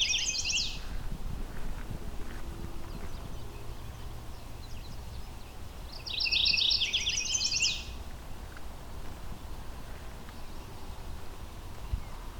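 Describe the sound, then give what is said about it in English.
A mourning warbler sings two bright, buzzy high-pitched phrases, one at the very start and another a few seconds later, at a forest edge beside a cleared dirt field with the leaves out, over a steady outdoor rumble of background noise. “So now that the leaves are out, it's harder to spot these warblers.”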